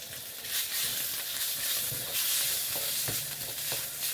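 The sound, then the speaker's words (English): Pork stir-frying in oil in a hot wok: a steady, bright sizzling hiss with a few sharp scraping clicks from the stirring utensil, no voices. “Stir frying that just briefly, so it starts to sort of cook some of the water out, turn color a little bit.”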